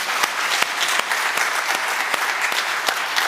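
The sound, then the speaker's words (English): An audience at First Baptist church claps together to give glory to God in a steady, dense burst of applause, many hands overlapping into a bright, even wash with a few sharper claps standing out, and no voices heard. “Now, if you're going to clap, let's clap.”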